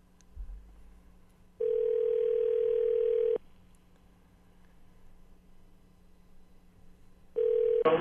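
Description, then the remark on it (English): Ringback tone of an outgoing phone call to a number given by a listener: a steady, fairly loud electronic ring burst lasting about two seconds, a long pause of quiet line hiss, then the next ring beginning. “I can't believe, though, when I phone this number that Bob gives me”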